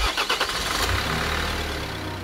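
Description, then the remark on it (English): A refrigerated truck carrying the first batch of coronavirus vaccine, loaded in Belgium and arriving in the UK: its engine cranks with a quick burst of rhythmic chugging, then catches and settles into a steady, low idling rumble, fairly loud, with no voices. “In a refrigerated truck loaded up in Belgium, the first batch of coronavirus vaccine has arrived in the UK.”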